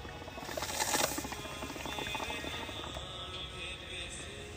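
Bong water bubbles and gurgles steadily for several seconds as a cone is smoked, a dense crackling burble that swells a little early on, then holds an even level. No voices.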